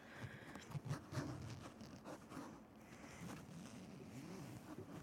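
A zipper on clothing is worked in several short, rasping pulls, mixed with rustling fabric and a steady background hiss, with no one talking.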